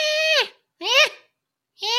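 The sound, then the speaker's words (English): A voice imitates a raccoon chittering from inside a dumpster with three short, squeaky, high-pitched bursts, each bending in pitch, separated by brief silences. “You're out there next to the dumpster and you're licking on it and you hear this skittering and like a chitter from inside the dumpster.”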